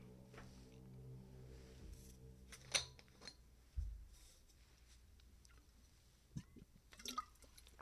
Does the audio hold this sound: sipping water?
yes